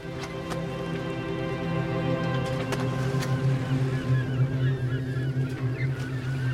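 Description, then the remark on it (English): A boat's engine drones steadily with a deep, even hum as the boat departs Seleucia by sea for the island of Cyprus, joined by a few sharp knocks and faint birdlike calls near the end. No voices are heard. “The three men walked to Antioch's port city, Seleucia, by the sea, and purchased passage on a boat to the island of Cyprus.”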